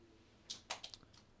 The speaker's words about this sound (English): Studio pup is scratching at the door.